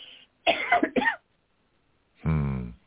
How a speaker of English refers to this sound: I mean, when I like talk I say, a lot, I get a cough because I have all those things.